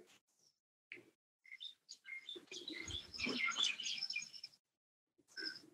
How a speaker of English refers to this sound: Enjoy the twittering of the birds. Sunrise in India.